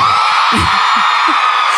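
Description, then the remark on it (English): A live comedy audience screams and whoops loudly on cue in a dense, sustained roar, with scattered yells rising above the wash of cheering throughout. “Scream if you barely made it here tonight.”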